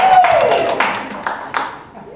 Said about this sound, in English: Yay, clap hands everyone.